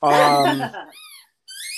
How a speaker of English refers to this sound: So Diesel loved the squeaky ball that he had that came when we got the dogs, and it was a small one, and he'd squeak it every once in a while.